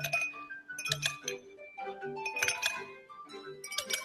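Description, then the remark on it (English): Ice cubes clink and rattle against a glass in quick irregular bursts, bright ringing taps repeating for several seconds with no voices. “The Joy-Con can convey to you the feeling of ice cubes colliding in a cup.”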